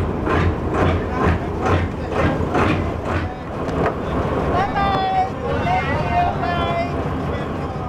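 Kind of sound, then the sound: vehicle, boat travelling on water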